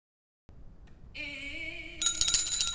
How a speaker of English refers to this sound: I did the bell first.